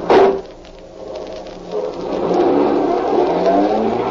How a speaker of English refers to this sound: Get this car moving.